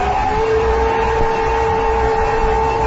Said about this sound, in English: Oh, I think I'll put in some honey, some garlic. What else have I got in here? How about some vinegar? Yeah, I'll just put in a little bit of everything. Why don't we just run this through the blender and froth it up a little bit, huh?